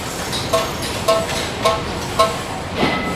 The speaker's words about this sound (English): Oh, can you hear all that? The hustle bustle of Kuala Lumpur.